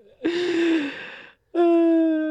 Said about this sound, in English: Sorry, I'm yawning.